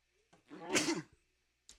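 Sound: sneeze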